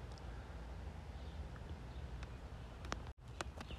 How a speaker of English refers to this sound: Can you hear the birds? Makes me smile.